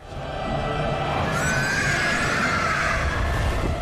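A horse neighs loudly, a long whinny that rises and wavers for a few seconds with no one speaking.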